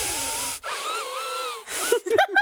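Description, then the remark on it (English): A voice imitates a person breathing really hard through the nose while concentrating, as when trying to wire something: two long, loud, hissing breaths, separated by a short voiced, strained sound, ending in a few quick huffs. “He'll just start breathing really hard through his nose.”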